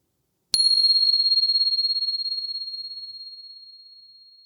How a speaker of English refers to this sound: So settling in. And here comes the bell.